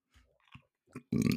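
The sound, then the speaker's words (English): A short, loud, throaty burp erupts near the end, preceded by a few faint mouth and lip noises; no one talks. “If there's any people with a burping fetish on here, like, you're so welcome.”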